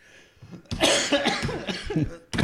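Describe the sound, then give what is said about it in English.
A person, set off by another person's sneeze, has a loud fit of coughing: several harsh, throaty bursts run together for over a second, then a brief pause before another cough starts. “You sneezed and it made me cough.”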